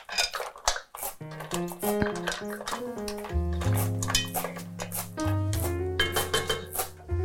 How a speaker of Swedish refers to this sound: Okej, då kör vi. Musslorna åker i.